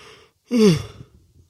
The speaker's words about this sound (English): Excuse me. Whoa. I'm getting hit with some yawns right now.